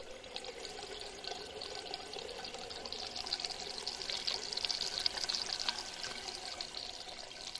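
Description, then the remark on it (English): Urinals flushing in a public toilet in London: a steady rush of pouring water that swells slightly in the middle and keeps running for several seconds, with no voices. “Nope, I was alone, with a MixPre 6 recorder and Rode NT4 stereo mic, making the urinals flush, like boomy waterfalls in the high Ecuadorian rainforest.”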